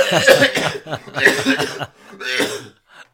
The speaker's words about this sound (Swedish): Inte hosta, inte hosta.